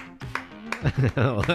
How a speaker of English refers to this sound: I'll just give you a real applause, but it's only me, so, you know, it might seem lackluster.